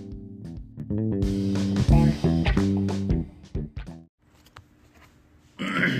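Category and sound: human body sound, burp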